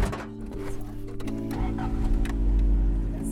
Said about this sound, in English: We packed into her truck, and she started slowly down the dirt road leading to the Hermitage.